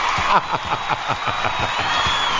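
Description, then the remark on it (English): A crowd at the show Inside the Industry roars and cheers at night in a loud, steady wash of noise, with quick rhythmic bursts like clapping or shouts running through it from start to finish. “The crowd is just going crazy here tonight.”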